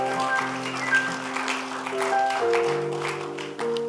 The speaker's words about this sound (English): Give the Lord a clap of when you have been blessed.